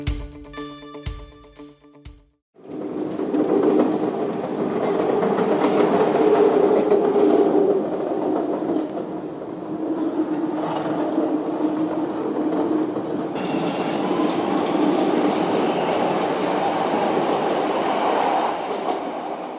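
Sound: train clickety-clack on rails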